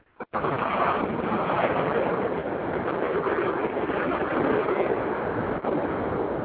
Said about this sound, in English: Wow, isn't it? It's loud. FAC, that's a jet right there.